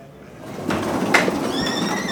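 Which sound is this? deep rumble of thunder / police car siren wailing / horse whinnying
horse whinnying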